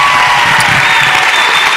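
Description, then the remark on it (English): A large audience at a youth conference applauds loudly and steadily, a dense wash of clapping that fills the whole moment with a faint crowd murmur beneath it. “Let's give him a big round of applause tonight.”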